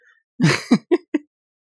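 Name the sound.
cough or throat clearing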